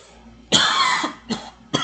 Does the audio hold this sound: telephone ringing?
no